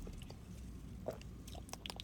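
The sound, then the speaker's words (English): Quiet sipping from a can of Diet Coke, with soft wet mouth noises, a gulp and a few small clicks and swishes of liquid, and no talking. “I'm gonna take a sip of my Diet Coke, apologies.”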